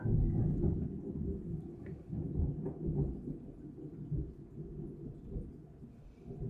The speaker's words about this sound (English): Wow, that was a big flash of lightning. Oh, I heard that one.